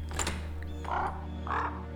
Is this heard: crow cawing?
yes